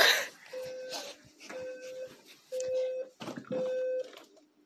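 An electronic alarm goes off with four steady, mid-pitched beeps, each about half a second long and evenly spaced, over faint rustling background noise.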